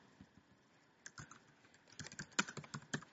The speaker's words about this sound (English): Why are you always typing? Were you typing in that box? I'm typing in the typey box.